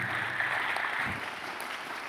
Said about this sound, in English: You're clapping.